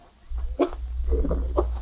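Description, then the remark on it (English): A dog, George, a mongrel stuck in the Willoughby's yard, lets out two or three short, sharp barks, spaced about a second apart, over a steady low rumble in the background. “Any dog with half a brain knows you can jump both ways over a fence.”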